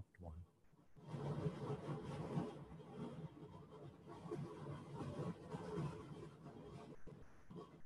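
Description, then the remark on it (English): A steady, rumbling train ambience from a sound app, set to about 30% volume, fades in after a brief quiet moment and carries on continuously, a dense mechanical roar with faint rattling texture at moderate loudness. “You can still hear your train in the background.”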